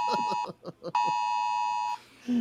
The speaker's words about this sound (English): Jesus Christ, guys. Got Amber Alerts going on. Oh, no.